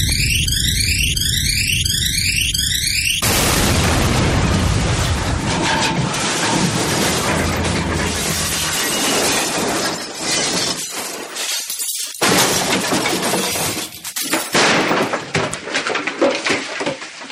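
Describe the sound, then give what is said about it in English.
A warbling sci-fi engine whine with repeating sweeping tones cuts into a loud, sustained crash of shattering glass and tumbling debris as the starship Poofwanian, its brakes severed, crash-lands in one of the high towers of Hogwarts, rumbling and clattering for many seconds before breaking up into scattered impacts. “The starship Poofwanian crash-landed in one of the high towers of Hogwarts.”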